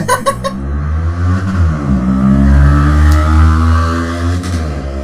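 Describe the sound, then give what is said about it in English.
A loud motorcycle roars past, its engine revving with a rising and falling pitch that fills the whole few seconds, with no voices over it. “Really loud motorcycle just went past.”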